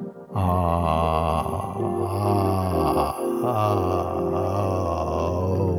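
A low, buzzing vocal tone is hummed steadily to vibrate through the throat over the thyroid area. It is held for several seconds with a brief dip midway, its pitch wavering slightly as it resonates without any words.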